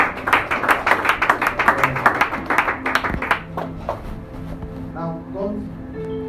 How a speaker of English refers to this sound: Clap for Jesus one more time.